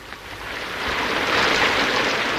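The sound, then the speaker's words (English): Heavy rain pours down in a dense, steady hiss that swells slightly louder partway through, a continuous wash of noise with no voices over it. “Not that you can see much with this rain falling.”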